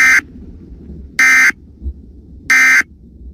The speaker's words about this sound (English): This is a cyclone weather alert. Ladies and gentlemen, radar has indicated a strong storm approaching Jack Rice Stadium. High winds and low visibility are expected. Panther fans in the warned area should seek immediate cover.